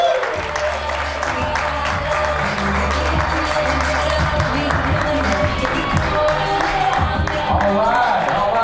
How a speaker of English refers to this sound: Start clapping now, guys.